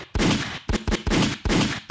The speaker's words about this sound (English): Where are my gunshots at? There it is.